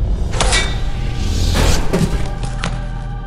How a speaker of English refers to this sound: In a single moment, Zuqil is catapulted across the room as Taimu blasts her backwards with a force push unlike seen before. Her body slams against the nearby bulkhead.